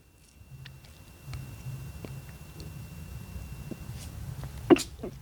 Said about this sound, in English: Oh, sorry. I just sneezed. I don't want to do that.